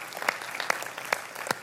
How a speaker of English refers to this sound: So thank you very much. And can we just applaud those volunteers one more time? Yeah.